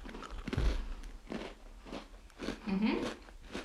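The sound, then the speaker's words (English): Loud crunching of a small, bite-sized birthday cake flavored cookie being bitten and chewed, a series of crisp cracking bursts with a faint murmur of voice underneath. “These are all small, bite-sized cookies. This is birthday cake. Here you go. Okay. Ooh, that's loud.”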